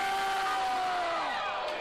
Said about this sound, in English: But listen to it. This is very important. See how invested the crowd gets to Bray Wyatt. All right, listen to the crowd here. This is Bray Wyatt.